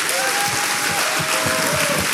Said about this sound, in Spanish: ¿Le podemos dar un aplauso al Señor?